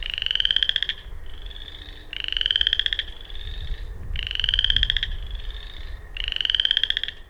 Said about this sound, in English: So you have an understanding that frogs do make like just a wide range of freaking noises. More than I actually considered or thought. So here you go. Boreal chorus frog.